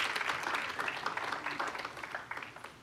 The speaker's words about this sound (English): Why don't we give them a hand clap? Glory to God.